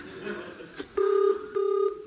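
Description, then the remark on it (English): A telephone number being dialed from a phone box to call a warehouse: after a brief stretch of low background noise, two steady electronic phone tones sound clear, each under half a second, separated by a short gap. “Now, let us phone up this warehouse.”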